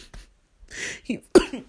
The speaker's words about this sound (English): oh, my God. My laughing and my weird coughing situation.